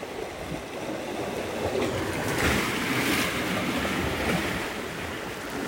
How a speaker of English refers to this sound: It's called Five Graves because there's five graves of some native Hawaiians that were buried on this site, and there's these tide pools, and they make some really cool noises as the water recedes, ebbs, and flows.